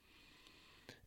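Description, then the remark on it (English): Two short, breathy sniffs, the second louder than the first, made by a voice imitating a deer sniffing the ground as it follows a scent. They're quiet, with no talking. “He's just very meticulously sniffing and taking some steps.”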